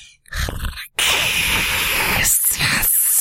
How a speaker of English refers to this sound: And off to the other side, there is a tunnel. And you hear hissing noises coming from the tunnel.